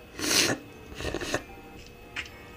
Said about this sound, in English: Sorry. Sniffles.